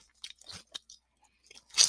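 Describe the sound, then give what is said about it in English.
Crunchy chewing of sugar snap peas that have been soaked for about an hour, a handful of irregular crisp bites with short pauses between them, ending in a louder, fuller crunch; no one speaks. “Because even though I've been soaking it for about an hour, I can't believe they're still this crunchy.”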